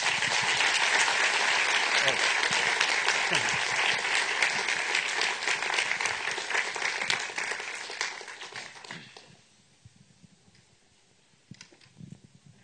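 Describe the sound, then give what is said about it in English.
A crowd applauds Dr. Kreeft with dense, steady clapping that holds strong for about eight seconds, then thins and fades out, leaving near silence with a few stray sounds at the end. “A round of applause for Dr.”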